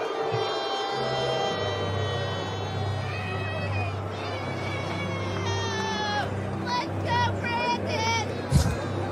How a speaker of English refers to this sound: Yeah, they were booing him. Let's go, Brandon.